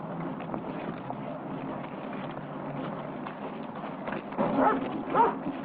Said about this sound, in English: With the dog approaching, Evil continues walking toward the store.